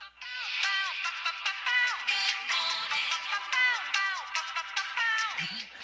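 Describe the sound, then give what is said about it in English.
A phone alarm ringtone used as a morning wake-up alarm plays a bright, chirpy electronic melody of quick swooping tones that repeats steadily for several seconds, fairly loud, with no one talking over it. “Isn't that like the most annoying ringtone ever?”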